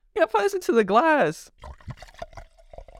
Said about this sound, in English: Let me open my Topo Chico first. ASMR. All right, hold on. We gotta pour this into the glass, bro.